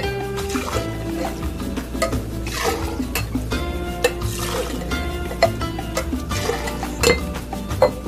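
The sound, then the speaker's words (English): A cocktail of coconut rum and triple sec being stirred, with ice clinking against glass in repeated sharp taps and swishes, over steady background music. “So we're gonna give that a mix.”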